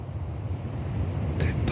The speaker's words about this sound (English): Whoa. Oh, I'm being played out by the ocean. That scared me. I thought something was falling down.